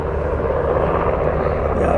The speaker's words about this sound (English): We got helicopters over here. Yeah, the president must be coming.